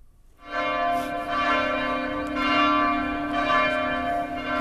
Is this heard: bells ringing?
yes